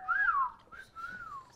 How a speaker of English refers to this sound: You do it so perfect. Yeah, you do a really good whistle.